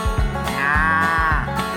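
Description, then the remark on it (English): A long, drawn-out cattle moo from a cattle truck rises and holds, fairly loud, over steady low rhythmic thumping like an idling truck engine. No one speaks. “And where do you think he left me? That's right, next to a cattle truck.”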